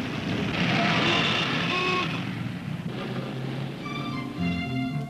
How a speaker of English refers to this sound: Look at that traffic on Fifth Avenue.